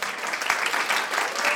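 A short round of applause, dense and steady clapping from a small group at an even loudness throughout, with no voices standing out.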